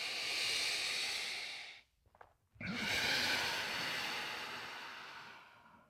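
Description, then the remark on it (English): Two long, airy breaths, fairly loud, separated by a short pause, taken during a yoga flow through child's pose and downward dog: a steady exhale followed by another drawn-out breath, slow and even, with no talking. “Exhale, child's pose, downward dog. And we're nowing, breathing.”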